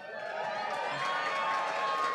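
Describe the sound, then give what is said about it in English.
A live audience cheers and whoops in a steady, sustained roar for a couple of seconds as a man takes a gigantic chug of drink, rising slightly as it goes, with no distinct voices. “Even easier than listing menu items to get applause is destroying yourself and your personality.”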